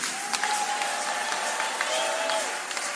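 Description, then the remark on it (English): A church audience claps and shouts steadily in praise of Jesus, dense applause with raised voices and whoops rising above it, continuous for the whole stretch. “Give Jesus a clapping, a shouting.”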